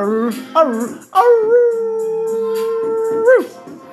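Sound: wolf howl sound effect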